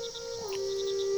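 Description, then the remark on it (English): A person imitates a screech owl with a steady, hollow whistled tone that steps slightly higher partway through and holds to the end, while faint insect-like chirps pulse in the background. “Can you make the call of a screech owl?”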